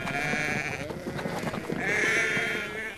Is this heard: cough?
no